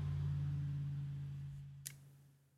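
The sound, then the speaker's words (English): A car passes outside, its low engine drone and road rumble steady at first, then gradually fading, with one brief click near the end and no voices. “Sorry, I wanted to let that car pass.”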